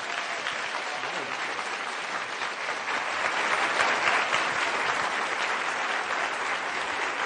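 A crowd on the campus of UC Berkeley applauds steadily to welcome a speaker, a dense wash of clapping hands that holds at an even, fairly loud level throughout, swelling slightly midway, with no voices standing out.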